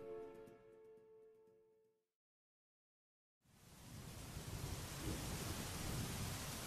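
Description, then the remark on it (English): A brief musical tone fades into a moment of silence, then a loud, dense roar of heavy rain and storm noise surges in and keeps building, enveloping, with no voices: a storm at sea about 10 miles off the coast of Whitby, at 10:47 p.m. “We're out in a storm about 10 miles off the coast of Whitby.”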